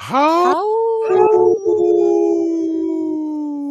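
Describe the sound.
A person imitates a wolf howl, voice sliding up sharply then holding a long, steady, slightly falling tone for several seconds, loud, with no other talking.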